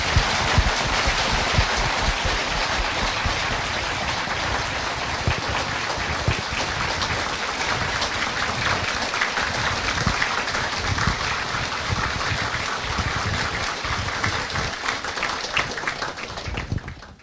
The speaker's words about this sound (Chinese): 接下来呢，让我们用掌声有请索达吉堪布跟我们互动交流。